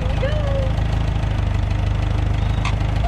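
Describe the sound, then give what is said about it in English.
A tractor's heavy diesel engine chugs steadily at low revs in creeper gear as the tractor moves very slowly, a loud, even rumble with a regular knocking pulse, and a brief higher whine rising above it. “So alright, so I will try creeper gear to start. Yeah, just to show how slow it goes, it's pretty slow.”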